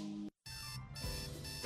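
An alarm clock rings loudly with a harsh, buzzy electronic tone rich in overtones, cutting out briefly before resuming and sounding steadily to the end.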